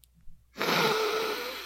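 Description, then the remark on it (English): After a short silence, one long, steady breathy inhale through the nose as someone sniffs a drink. The hissy airflow starts abruptly, holds for about a second, then eases off slightly. “Look, I'm going to sniff this, and then I'm going to tell you about it.”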